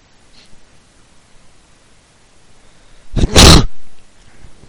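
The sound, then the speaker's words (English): A single sharp, breathy sneeze from a dog, loud, bursting out about three seconds in over otherwise quiet, faint rustling. “Bless you, buddy.”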